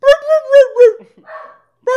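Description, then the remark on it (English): A person mimics a dog barking, giving four quick, loud, voiced woofs in a row, then a softer trailing sound and one more bark starting at the very end. “My dog is barking. Your dog is barking. Imitate that sound.”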